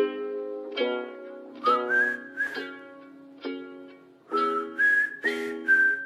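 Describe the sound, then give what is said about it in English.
A clear whistled tune rises and holds high sustained notes in two matching phrases over a steady plucked or strummed backing, with a slow western-style rhythm and no talking. “I cannot whistle at all.”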